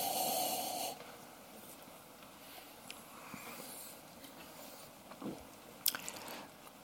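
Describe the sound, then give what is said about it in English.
A breathy inhale lasting about a second as someone sniffs wine, followed by quiet small wet sounds and a couple of soft slurping sips of the wine against a faint background hiss. “So the sniff is a very important part of it.”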